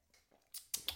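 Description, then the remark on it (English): Someone takes a gulp of a drink, heard as three quick, airy slurping bursts in close succession, fairly soft, with no talking. “Right, let's have another gulp on that.”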